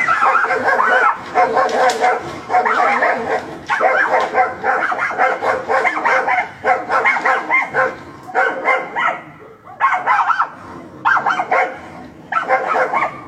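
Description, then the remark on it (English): Several dogs bark and yip loudly at one another in a steady, overlapping back-and-forth, with near-constant bursts and brief gaps and occasional whimpering. “They're going at it like dogs.”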